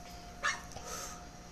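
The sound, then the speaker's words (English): Dogs bark in the background: a sharp bark followed by a softer second one, over a steady low hum with no one speaking. “You hear them killers in the background. Please don't step up on this property, cause you will be bitten and shot.”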